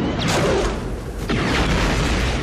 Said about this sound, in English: I remember one of the principal elements in that explosion is a big sheet of plywood, which we snapped out in back of the building in the parking lot and added it in on top of the explosion itself. We dubbed it the Wood Crack Attack Explosion.